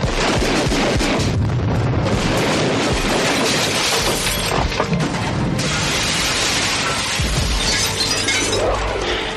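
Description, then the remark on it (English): Loud, chaotic crashing of window glass shattered by gunshots, mixed with more gunshots and an explosive boom, a dense wall of noise that barely lets up for the full length, with no voices. “Oh, and I love that too when he has to kick away and then use his gun to shoot through the glass.”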